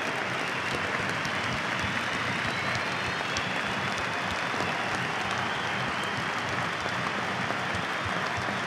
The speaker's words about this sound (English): Sunderland fans are clapping him off.